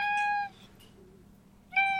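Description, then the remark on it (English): A cat meows twice, fairly loud: a long, steady meow, a short pause, then a second meow that is cut off at the end. No one speaks. “It's a cat.”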